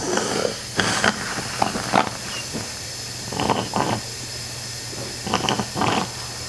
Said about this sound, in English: then suctions the mucus from his chest with a small vacuum.